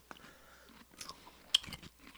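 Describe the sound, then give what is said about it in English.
A crisp bite into a garlic-flavored pickle from a jar, followed by a few wet crunching chews in quick irregular bursts, with no talking. “Okay, crunch. Loving the crunch.”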